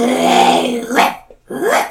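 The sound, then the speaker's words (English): A dog's low, drawn-out snarl rumbles loud, then breaks into two short, sharp barks with a brief gap between them. “Fifi snarls and barks at you, baring her teeth.”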